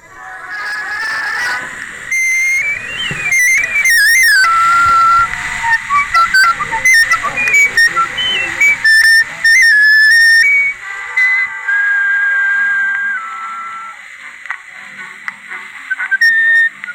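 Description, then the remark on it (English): An 1898 Berliner phonograph plays a record through a new steel needle, fitted fresh for each play: a thin, high, whistle-like melody rises and falls over a steady surface hiss, with no deep bass and no talking. “Oh, we're going to put a new needle in for every play.”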